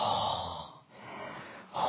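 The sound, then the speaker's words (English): A voice imitates the heavy, labored panting of an exhausted man out for a run: a few harsh, breathy gasps, loud at first, easing briefly, then surging again, with no words spoken. “You know, I could hear him breathing inside the house. You could see he was struggling.”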